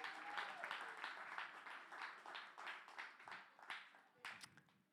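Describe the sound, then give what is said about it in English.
A church crowd claps for themselves in a steady burst of applause, dense and sustained for several seconds before thinning slightly toward the end, with a faint voice briefly audible underneath. “So can you give yourselves a hand clap?”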